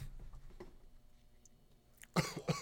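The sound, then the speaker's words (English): Two sharp coughs burst out near the end, following a stretch of quiet low rumble and faint movement noise. “Starts coughing.”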